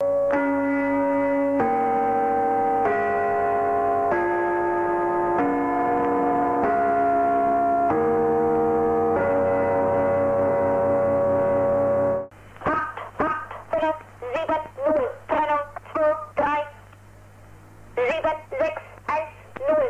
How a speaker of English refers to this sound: can you pull up the Gong Station number station?